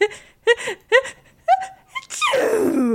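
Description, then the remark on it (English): A voice imitates the mighty echoing sneeze of the character Astra casting her fog spell: four short, pitched gasping yelps build up, then a loud, breathy, noisy burst bursts out and trails off with a falling tone. “And Astra does what she normally does, which is rear back her head for just a mighty echoing sneeze.”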